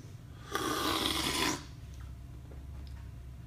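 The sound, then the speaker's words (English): A single loud, airy slurp of a full-roast Guatemala coffee being tasted, lasting about a second, a hissing rush of air and liquid that stops abruptly, over a low steady background hum with no talking. “Tasting, fun part, slurping.”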